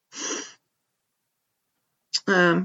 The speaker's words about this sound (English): My co-host is snoring.